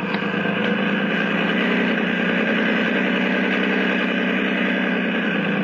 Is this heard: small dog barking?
no